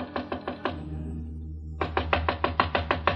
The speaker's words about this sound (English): Room 6 was on the first floor. There was a light on inside the room, and I knocked on Jan Svensson's door.